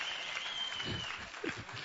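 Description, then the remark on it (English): A church audience breaks into steady applause and cheering after the pastor drops his glasses, a dense, continuous wash of clapping and voices lasting a couple of seconds. “Wow, I drop glasses, I get a cheer.”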